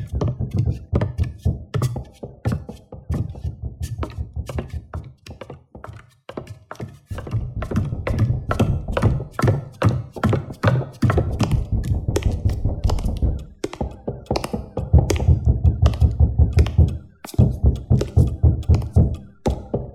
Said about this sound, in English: Who's pounding on Jake's door, Texas?